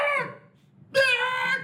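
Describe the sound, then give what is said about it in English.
A person imitates a chicken with two strained, squawking vocal bursts, a short one and then a longer, louder one after a brief pause. “They put nails to the wings. Chicken's like.”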